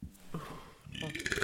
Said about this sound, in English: Ew. Oh, my God, did you hear that? Yeah. I hate burps. I'm so sorry.